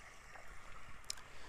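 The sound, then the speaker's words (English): A steady, soft wash of flowing river water in Oregon murmurs continuously, with a brief faint tick partway through and no voices. “Tonight we are joined by my dog and the sounds of an Oregon river.”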